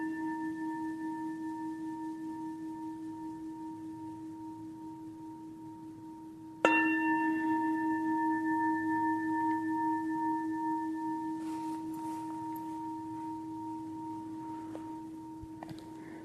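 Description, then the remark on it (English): A meditation bell, still humming from an earlier strike, is struck once more partway through and rings out with a long, steady, shimmering sustain that slowly fades. No voices. “just for fun, as we come to the end, when I play the bell, see if you can feel the sound in your body.”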